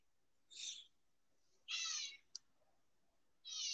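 A cat meows three times in short, high-pitched bursts with pauses between them, fairly soft. A brief click follows the second meow. No one speaks.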